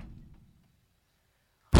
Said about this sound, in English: The casket breaks down my bathroom door, slowly bumping and moving closer.